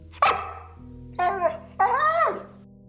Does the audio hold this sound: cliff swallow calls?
no